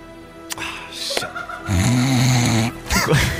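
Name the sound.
imitated snoring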